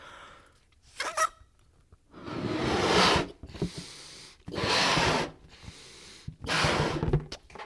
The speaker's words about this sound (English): I'm going to go ahead and blow up another balloon just because I feel like we need more than three, you know? We didn't even get to all the colors in the balloon pack.